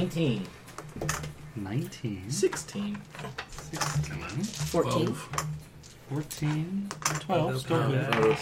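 Dice rattle and clatter across a hard surface in short bursts as players roll for a fortune, mixed under people chatting and reacting over the top.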